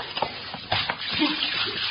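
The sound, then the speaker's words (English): Water pours from a pitcher in a steady gush lasting a couple of seconds, with a few splashy bursts breaking through the rushing sound. “Hey, let's have that pitcher of water.”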